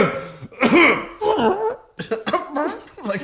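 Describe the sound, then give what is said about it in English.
A person lets out several loud, voiced coughing sounds in uneven bursts, with a strained, throaty quality, as if deliberately forcing or acting out a cough. “You try to cough. It's never in time. Try to cough.”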